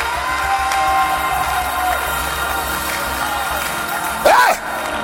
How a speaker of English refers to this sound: Come on, clap your hands and scream like your voice is yours.